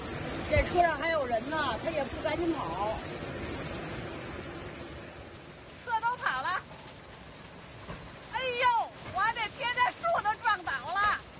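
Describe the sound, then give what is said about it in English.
Brownish floodwaters from a storm roar continuously, gushing down main city streets and pouring into residential areas, while several voices call out and talk excitedly over it, growing louder toward the end. “Another video captured brownish floodwaters gushing down the main streets and pouring into residential areas.”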